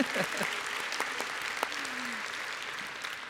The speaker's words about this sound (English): Friday, we celebrated my little girl's 7th birthday, and so she's sitting right over there. We all give Chaney a round of applause.